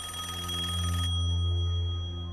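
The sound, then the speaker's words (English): A telephone rings steadily, a sustained buzzing bell tone that fills the whole moment with no one speaking over it; it is the fourth phone on the east side. “You said third phone on the east side, not fourth. That's not my call.”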